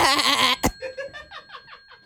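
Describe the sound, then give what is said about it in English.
A person imitates a goat with a loud, quavering bleat, followed by a quick burst and then a run of short, wavering bleating cries that sound almost like laughter, fading out. “make a goat sound right now for me, please.”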